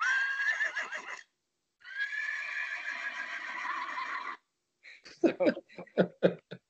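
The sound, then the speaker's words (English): A person imitates a horse's whinny with a long, wavering neigh, pauses, then gives a second drawn-out one and finishes with a burst of choppy, snorting sputters, all loud. “Do you guys like my horse neigh?”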